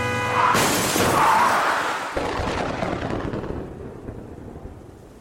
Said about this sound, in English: Look out! Just then, a huge truck smashed into us from the side.